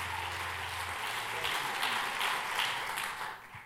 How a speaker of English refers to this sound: Give the Lord a great hand clap of praise and lift your voice before you see.